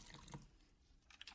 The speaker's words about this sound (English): Pour up another one.